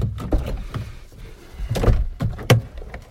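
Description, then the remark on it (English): A door is opened, with low rumbling shuffles followed by a few sharp thunks and clicks of the latch and frame in quick succession, and no voices. “Me being reckless and caring quite a lot, I'm just going to actually open that door.”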